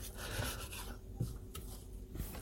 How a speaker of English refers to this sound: Is this really boring to you, just listening to a man cut brown onions?